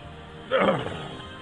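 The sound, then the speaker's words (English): A single brassy trumpet from a big elephant blares out, loud, rising sharply and fading within half a second over a low background hum. “I hate elephants.”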